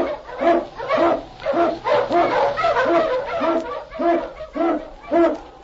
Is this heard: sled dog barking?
yes